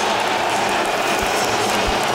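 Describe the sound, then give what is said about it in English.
A hockey crowd at a Toronto Maple Leafs versus Edmonton Oilers game boos in displeasure, a dense, steady wash of voices that holds at an even, loud level throughout with no single voice standing out. “Crowd voices its displeasure, and the Leafs will get their second power play of the night.”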